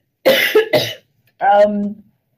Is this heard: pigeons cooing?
no